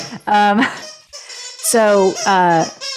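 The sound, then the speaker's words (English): A dog squeezes a squeaky toy taken from his toy basket over and over, letting out several loud, honking squeaks in quick bursts, some drawn out, each with a buzzy, reedy tone. “So there was my dog is raiding his toy basket, so get ready.”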